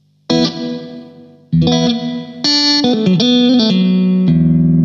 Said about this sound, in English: So this is the MXR Reverb. This is the MXR Reverb. And at the moment it's on plate with everything on 12 o'clock.